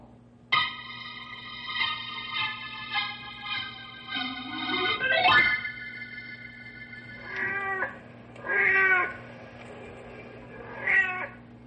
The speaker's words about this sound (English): The big tomcat you're hearing on the prowl is called Blackie. He's the fond pet of Mrs. Beulah Lindstrom.